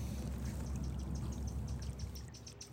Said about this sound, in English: So we are where the spring water has been flowing down through this channel, and now we're at the place where it actually enters the pond.